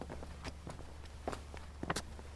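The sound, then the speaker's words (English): Footsteps walking uphill on Motherby Hill, a narrow old lane with gas-style lamps: a steady series of soft, scuffing steps with a few sharper crunches, over a low constant rumble and no talking. “And we're not too out of breath, but then, to be honest, we've not been breaking any records, probably because we're enjoying the walk so much.”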